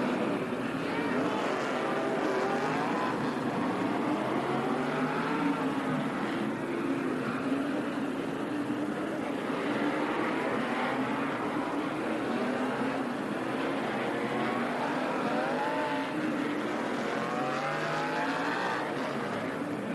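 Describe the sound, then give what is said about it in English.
Several race car engines drone steadily as the cars roll slowly onto pit road for service at Phoenix International Raceway during a caution period brought out by Phil Parsons, their overlapping pitches rising and falling in a loud, continuous roar lasting the whole stretch. “Here at Phoenix International Raceway, most everyone taking advantage of this caution period brought out by Phil Parsons to come onto pit road for service.”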